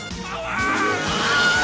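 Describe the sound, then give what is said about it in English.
A man's short, strained scream, the classic Wilhelm stock effect, rings out loud over a dense wash of crashing, clattering noise that fills the moment. “Wilhelm scream!”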